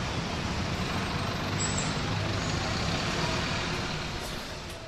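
A bus engine rumbles with a loud, steady air-brake hiss spread over it. No voices are heard, and the noise eases off slightly near the end.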